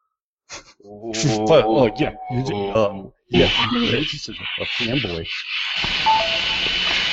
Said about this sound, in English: Oh no, that was my phone. I'm sorry. Yeah, sound like you're sucked into a black hole or what?